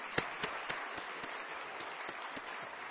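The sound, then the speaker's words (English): An audience applauds, many hands clapping at once in a dense, steady patter, with a few sharper individual claps popping out now and then. No one speaks. “Let's give them a round of applause for all they did.”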